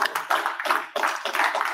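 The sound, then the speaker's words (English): An audience at a Lunch and Learn event applauds as the speaker makes his way up, with dense, steady clapping from many hands, sustained and fairly loud throughout, with no voices standing out. “Let's give him a round of applause as he makes his way up.”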